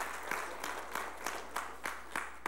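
An audience applauds steadily, a dense wash of clapping with a faint regular pulse running through it, holding at an even level without any voices.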